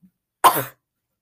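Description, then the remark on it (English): A single harsh, raspy cough after inhaling dust bursts out, short and forceful, with a faint breath just before it and silence afterward. “Every breeze I make, I have to cough.”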